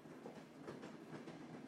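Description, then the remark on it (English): A steady, rumbling locomotive-hauled train rolls along after leaving the station, its wheels clicking and clacking over the rail joints in a faint, rhythmic pattern beneath a continuous low roar. “Its fading tones were covered by the rhythmic resonance of the train's wheels, clicking and clacking over the tracks.”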